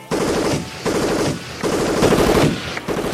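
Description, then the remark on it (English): Loud, rapid bursts of automatic gunfire from police officers, hitting their own line, crackle in three or four long volleys with brief gaps between them, each a dense, harsh rattle of shots. No voices are heard. “He was shot in the shoulder by one of his fellow officers”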